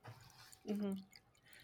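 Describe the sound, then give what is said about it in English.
A can of Twisted Tea is poured quietly into a glass, giving a soft trickling and dripping sound for under two seconds, with a brief voice sound partway through. “Are you pouring it? Oh, so pour it next to the thing. It is a twisted tea.”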